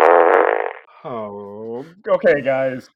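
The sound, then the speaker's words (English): A loud, buzzy fart sound effect blasts for just under a second, followed by wobbly, drawn-out voiced noises with sliding pitch that fill the rest of the short clip. “Fart sound activated.”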